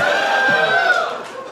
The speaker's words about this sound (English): Yeah, people managed to applaud.